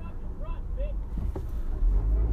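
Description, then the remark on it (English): Two short car horn honks in quick succession, fairly faint against a steady low rumble of traffic and wind noise from inside a vehicle. “There's a cute young teenager flipping someone off in the car next to me, and that's why you proceed to hear honking.”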